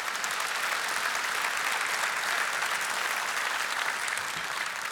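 An audience claps steadily for the full five seconds as two people are invited to come up, a dense, even wash of many hands with no voices breaking through.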